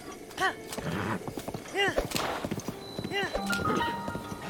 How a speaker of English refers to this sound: All right, we're riding our horse north from the Istikala stable along the road.